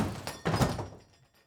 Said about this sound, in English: It's kind of a quiet night, and then your door gets booted open.